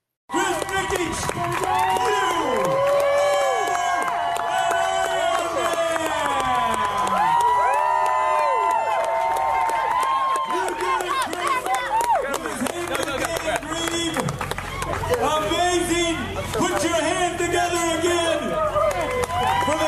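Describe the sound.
A large crowd cheers and shouts loudly and continuously for about twenty seconds, a dense wall of whooping voices with excited yells rising above the roar, energetic throughout, as Nikic crosses an Ironman finish line, becoming the first athlete with Down syndrome to finish an Ironman.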